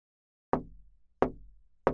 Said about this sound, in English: You hear a rap on the shoji screen to Kuniguru's door.